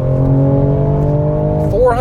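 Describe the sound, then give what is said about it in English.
A BMW M4 engine, rated at 473 horsepower and 406 pound-feet of torque, holds a loud, steady, buzzing idle drone for most of the moment, then revs sharply upward in pitch near the end. “That's exciting because this engine makes unbelievable amounts of power.”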